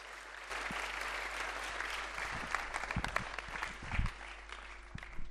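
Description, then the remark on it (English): An audience gives God a round of applause, breaking into sustained applause, a dense wash of clapping with a few sharper claps standing out, steady and moderately loud throughout with no talking. “It might sound crazy, but can we give God the loudest round of applause?”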